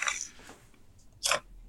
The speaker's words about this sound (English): But we're both, because it's never not a great time to have, we're both having peanut butter on toast. You want to hear a crunch? I want to hear a crunch.